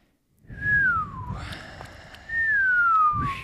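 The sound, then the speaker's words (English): Someone tries to whistle, producing two breathy, wavering notes that each slide downward, separated by a burst of airy hiss, with a lot of rushing breath under the tone. “I still can't whistle.”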